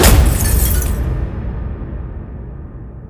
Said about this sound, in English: The guard's voice echoed out, shakily and unnatural in its pitch, before he shoved his fist through the plexiglass.